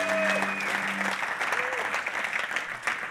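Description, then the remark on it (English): An audience applauds to thank two people who led songs at a Friday night worship gathering, a steady, dense wash of many hands clapping at a fairly even level, with a few brief tonal notes and murmurs mixed in at the start. “So can we thank”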